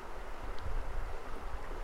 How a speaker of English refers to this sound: The water is flowing by in a steady roar of joy, and you just feel good.